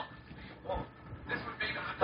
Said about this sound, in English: I hear a dog barking.